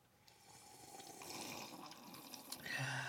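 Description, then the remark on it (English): Water in a bong gurgles and bubbles steadily for a few seconds as someone inhales, drawing air through it, a rough bubbling that grows a little louder toward the end, with no talking. “pulling on a water bong.”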